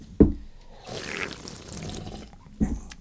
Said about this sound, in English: All right, now everyone do me a favor and take a sip into the mic at the same time.